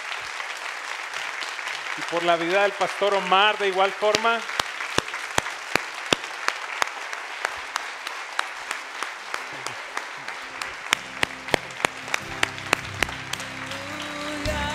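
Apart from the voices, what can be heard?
audience applause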